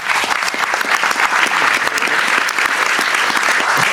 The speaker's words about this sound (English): Lee, please, a huge round of applause for Lee Quarnstrom.